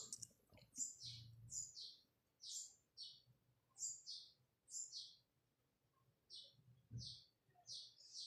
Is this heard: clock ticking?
no